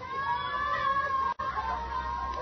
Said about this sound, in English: Do you hear? They scream sometimes like that in the night. Maybe they scream because they remember things.